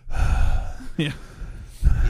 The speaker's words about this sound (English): … does push-ups in between segments. So he's like out of breath. Yeah, so he's breathing hard anyway.